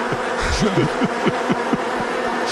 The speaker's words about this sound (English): 10 million bees go. They're slowly killing me in the middle of my own street.